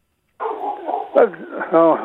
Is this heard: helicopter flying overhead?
no